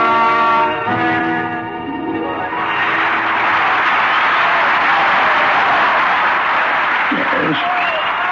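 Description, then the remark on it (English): Loud audience applause for the ventriloquist Turpin swells in after a brief sustained tonal sound and continues as a steady, dense wash of clapping for several seconds. “Oh, just listen to that applause.”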